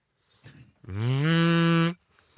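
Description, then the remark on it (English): A kazoo hummed into, giving one loud, buzzy, nasal note about a second long that scoops up in pitch and then holds steady, preceded by a few faint shuffling sounds. “I forgot, you don't just blow into a kazoo, you have to hum.”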